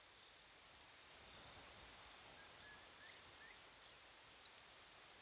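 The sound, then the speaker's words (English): Crickets beside a sandy path chirp steadily in a soft, continuous high-pitched trill, with brief brighter bursts standing out now and then against a faint outdoor hush; no one speaks. “Crickets, ants, going about their business.”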